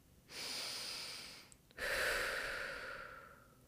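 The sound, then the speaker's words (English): A slow, deep breath: a long airy inhale lasting over a second, a brief pause, then a fuller, slightly louder exhale that gradually fades. No talking. “I really just want to take this moment to take a deep breath.”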